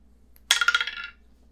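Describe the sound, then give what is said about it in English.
A die is rolled onto a fur carpet, landing on 20, making a quick burst of clicky rattling bounces that fades within about half a second. It is fairly loud, with no talking. “Does a 20 on fur carpet count? It does not. Oh no. Do you need a dice tray?”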